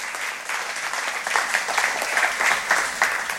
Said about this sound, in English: I'm going to finish up our teaching time. Will you guys give her a round of applause for helping me out?